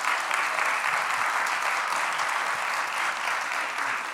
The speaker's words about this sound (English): And we're so thankful this morning for our worship team and our musicians and those who are upstairs, our ushers, our security team, those working the parking lots, our greeters. Can we give the Lord a hand clap for all of them?